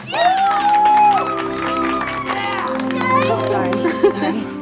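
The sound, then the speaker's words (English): A group of voices cheers and shouts together at the end of a speech, loud, with overlapping excited calls rising and falling throughout and a brief sharp burst near the end. “And then at the end, they're all cheering, right?”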